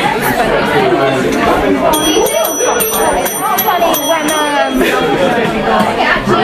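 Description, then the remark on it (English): A small hand bell rings in a quick, steady series of bright metallic dings for a few seconds, cutting through a loud, constant hubbub of crowd chatter. “Where's my little bell?”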